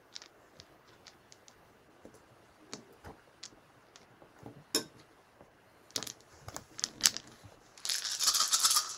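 Twelve dice clatter and click against a hard surface in a scattered series of sharp, bright hits, building to a dense rattling burst near the end as many dice tumble at once. No one speaks.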